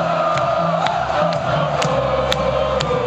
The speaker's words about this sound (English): Where, as a sports anthem. It's one of the biggest anthems of all time. Yeah. It actually started in October 2003 in Italy, and the crowd started chanting the hook.